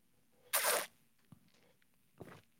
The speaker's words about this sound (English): Woo. That was an aggressive final sip of the day. As a matter of fact, I'm going to go chase that with a little agua frescas, okay? That was 2 more ounces than I thought I was going to get right there.